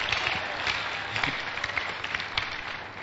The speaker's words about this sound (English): You clap properly. Clap properly. Even if you haven't done some before, clap for Jesus.